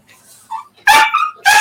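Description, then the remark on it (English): A dog named Radar barks twice, loud and sharp, after a brief high whine, reacting to the doorbell when someone is at the door, with no talking. The barks come in quick succession, the second cut off at the end. “Someone's at the door. Radar's freaking out a bit.”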